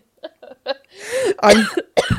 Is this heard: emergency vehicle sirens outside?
no